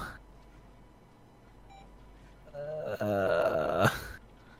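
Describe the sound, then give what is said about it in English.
Heavy, ragged breathing swells for a second or two, a strained, rasping exhale with a groaning edge, after faint electronic beeps over a low background hum. “His breathing is making me very uncomfortable.”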